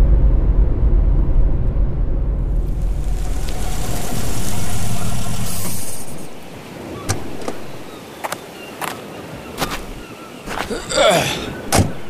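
A car that has just arrived idles with a low, steady engine rumble for several seconds, then quiets, followed by a few sharp clicks and knocks, like a door being handled.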